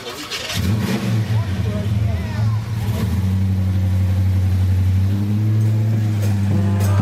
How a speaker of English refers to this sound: motivate and inspire this group of people with the revving of your truck